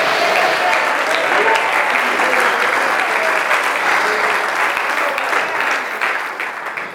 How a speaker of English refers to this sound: You didn't stop clapping your hands. You didn't stop having emotion, but you centered your emotion on God's word.